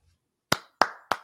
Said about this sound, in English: Oh, don't clap for that garbage. Don't clap for that entire spill of just complete and utter.